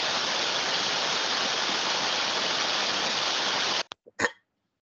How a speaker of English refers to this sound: Well then, that was the static of 60 years of Captain America napping and what the radio would have sounded like when he turned it back on, rather than the perfectly clear Brooklyn game coming through.